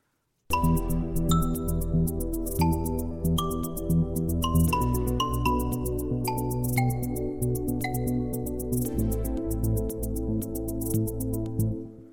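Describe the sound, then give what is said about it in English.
A synthesized "DIY marimba" preset plays a busy melodic pattern of short, bright mallet-like notes over a steady low bass line, continuous and moderately loud, with no voices. “Let's try DIY marimba. Quite like that. I'm going to try the marimba.”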